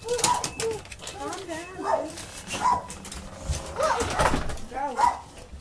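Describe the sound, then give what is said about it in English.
A woman's dogs at her house bark in a string of short, yappy barks mixed with high whines, scattered irregularly throughout, with some indistinct human voices in the background. “That's her dogs there.”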